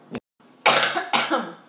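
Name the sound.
cough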